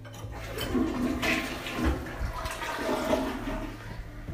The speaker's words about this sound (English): Okay, I just flushed down the toilet a cigarette.